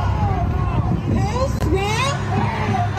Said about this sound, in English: And then here they are out in the streets. This is in Los Angeles. Here they are out in the streets trying to block the freeway and bashing cars with sticks and bats here in clip 20.